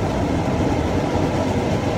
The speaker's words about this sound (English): Sorry, just waiting for a metro to pass.